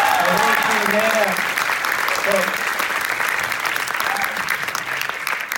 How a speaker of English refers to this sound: So give a round of applause for the whole team.